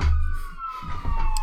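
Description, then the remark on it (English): A siren wails steadily, its tone sliding slowly downward over low traffic rumble, from emergency vehicles passing on a freeway. “And hopefully, can you guys hear those sirens?”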